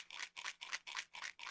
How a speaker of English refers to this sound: Oh, sounds like somebody's shaking dice.